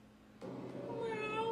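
A single drawn-out meow begins abruptly and rises into a sustained, whiny tone that holds steady and fairly loud until the end, with no talking.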